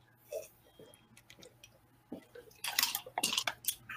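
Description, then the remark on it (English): Wet gulping as someone chugs a drink: a few quiet swallows at first, then a quick run of louder, sloshy gulps in an uneven rhythm. No one talks. “Look, I'm gonna chug it.”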